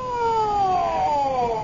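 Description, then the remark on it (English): A wailing ambulance siren slides slowly downward in pitch, steady and fairly loud, with no voices over it. “What's the ambulance for?”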